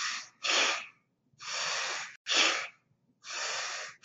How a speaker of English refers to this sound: Well, the 1 minute meditation is really easy because it's a minute. So it's 30 seconds of breathing, and which looks something like this, just closing your eyes.